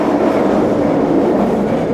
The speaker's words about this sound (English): The Detroit People Mover passes overhead as people wait around the Rosa Parks Transit Center.